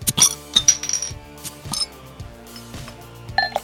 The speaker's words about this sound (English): So let's crack those beers and have some fun.